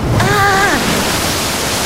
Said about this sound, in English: Out of seemingly nowhere, a wall of water rushes towards them. I mean, us.